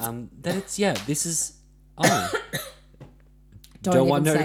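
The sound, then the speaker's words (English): A person coughs in several loud, rough bursts spread across a few seconds, with some voiced throat sounds mixed in and brief quiet gaps between them. “I knew the minute I coughed you were going to say something.”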